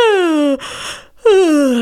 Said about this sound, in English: I'm gonna yawn again. Oh, this happens during every vocal lesson I ever teach.